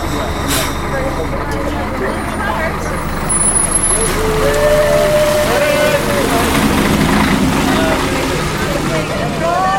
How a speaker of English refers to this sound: On a frosty January morning at 6:30 a.m, it is still dark as the students head off on the bus to Dublin.